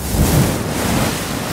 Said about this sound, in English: As he delighted in his joke, another wave came crashing in.